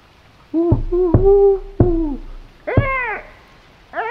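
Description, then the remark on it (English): A person imitates a screech owl, giving a fairly loud series of about five wavering, descending hoots with short gaps between them, and no other talking. “Sorry, that's twice like a screech owl.”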